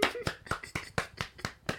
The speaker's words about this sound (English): Sorry, I'm just applauding with one hand.